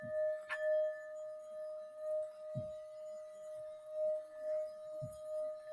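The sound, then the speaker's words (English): Singing bowls ring with a steady, sustained mid-pitched hum and shimmering overtones, a bright metallic strike near the start, and soft low thuds recurring every couple of seconds beneath the drone. “Just keep breathing and listening to the sound of the singing bowls.”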